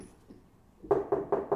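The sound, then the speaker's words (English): A next-door neighbor bangs on the wall in four quick, evenly spaced thumps, each a loud, dull knock with a low resonant ring, following a brief near-silent pause with no voices. “They're just like banging on the wall, clanging and banging on the wall.”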